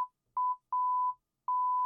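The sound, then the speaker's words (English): A steady, high-pitched censorship bleep sounds in several bursts: a quick short blip, then a longer sustained tone, then another long tone running to the end, with no voices audible. “But they don't beep it in China.”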